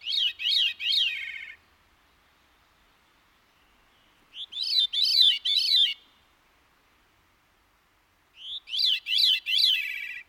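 A Veery's song, soft mellow flute-like notes in three short phrases spaced a few seconds apart, each a quick run of rising and falling tones, heard clearly with no voices.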